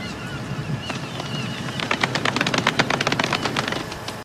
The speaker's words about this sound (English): My fingers are dry. I can't snap golf clap. That well either, but yeah, a little golf clap. Golf clap? Golf clap.